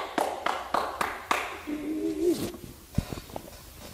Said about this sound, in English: Yep, I think I clapped wrong. I'll clap again.